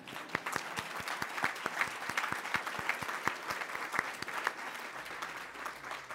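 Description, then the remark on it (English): An audience applauds steadily for about six seconds to honor an architect approaching his 96th birthday. A dense patter of many hands claps at an even level, with a few sharper individual claps standing out, tapering slightly at the end. “yes, that's worthy of applause.”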